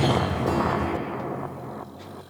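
A single loud, booming explosion bursts in at full force, its deep rumble and crackling debris slowly fading away over a couple of seconds, with no one speaking.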